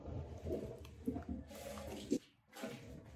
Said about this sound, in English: Okay, so here I'm going to pour the tinned tomatoes over the cabbage rolls.